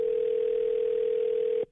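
A steady telephone dial tone hums at an even, moderate level for about a second and a half, then cuts off abruptly, as a radio show places a phone call. No voices are present.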